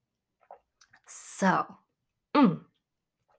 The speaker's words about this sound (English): And for that, I need a sip of coffee.